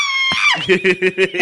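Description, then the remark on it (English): A shrill, high-pitched scream from a young boy, held briefly before breaking into a quick run of four or five rhythmic, pulsing shrieks, loud with no talking. “It's so high pitched and like adolescent young boy.”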